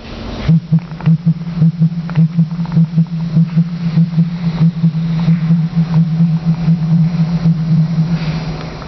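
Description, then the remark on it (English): A male pigeon's loud booming courtship call: a deep, steady droning tone with a fast, rhythmic pulsing throbbing through it for several seconds, sounding oddly electronic, with no talking. “the male dances for the female to show off his crest, and he also makes a loud booming noise that doesn't actually sound like a pigeon call.”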